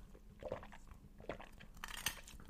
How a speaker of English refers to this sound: So I'm going to sip my glass here.